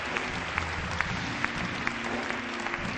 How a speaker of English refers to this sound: Let's give the Lord a hand clap for his mercy. Give the Lord a hand clap for his grace.